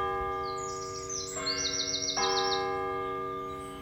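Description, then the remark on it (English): Birds chirp and sing in quick, high trilling runs, clear, over a steady humming tonal drone that continues throughout. No one speaks. “And I'd like you to have a moment's gratitude that we actually have birds here on Earth.”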